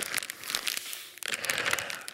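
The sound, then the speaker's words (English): A plastic bag crinkles and rustles steadily, a dense crackling texture with a brief lull around the middle before the crumpling picks up again. No voices. “Not trying to take a plastic bag off my head.”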